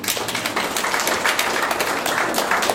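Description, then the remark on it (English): A group of people clapping their hands in steady, dense applause that holds an even loudness for the whole few seconds, with no talking over it. “Can we give it to him a hand clap, please?”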